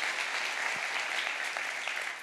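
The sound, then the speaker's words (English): The audience at Genesis Metro gives God a round of applause together, a steady wash of many hands clapping at an even loudness throughout, with no voices standing out. “And so we can thank God and we can give God a round of applause for what he has done through all the people at Genesis Metro.”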